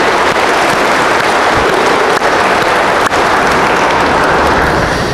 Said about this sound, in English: Now we can applaud them for wanting the gifts of the Spirit.